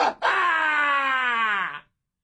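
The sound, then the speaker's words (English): A person lets out one loud, sustained, pained shriek lasting under two seconds, strained and wavering, acting out the agony of a sudden leg cramp. It stands alone. “You know, and I just shriek.”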